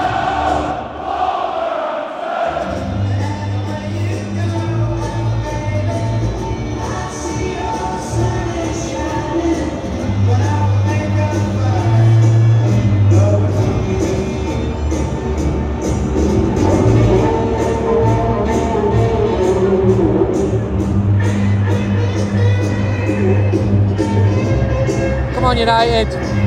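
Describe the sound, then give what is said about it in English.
A large crowd of Wolves fans behind both ends sings together in a stadium at a Manchester United game, a dense, loud, sustained chant with rhythmic swells and a steady pitched melody carried by many voices throughout. “And the behind both ends are the Wolves fans singing.”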